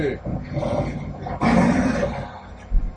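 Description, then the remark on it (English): A cougar growls and snarls loudly, a rough, continuous rumble that surges into a harsher burst midway, then ends with a short, heavy thump. “Big cat. Cougar, puma, mountain lion, same thing.”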